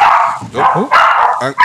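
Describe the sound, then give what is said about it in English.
Dogs bark and yip excitedly in a quick run of loud, high-pitched barks with little pause between them, some sliding upward into whiny yelps. “Let me just get rid of these dogs.”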